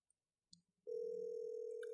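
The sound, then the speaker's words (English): After a few soft clicks, a steady telephone ringback tone of an outgoing call hums loud through the earpiece, holding without a break to the end. No one speaks. “It's just ringing and ringing.”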